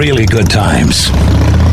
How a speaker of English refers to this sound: This is the sound of a popular American motorcycle. It's the sound of freedom, the open road